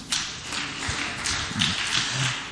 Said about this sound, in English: It's a good question. Clap for her.